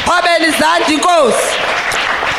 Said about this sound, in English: And clap for the Lamb of God.